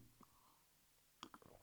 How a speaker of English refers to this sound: Simultaneous water sip there. I like it. That's dude. Nice. We're in sync.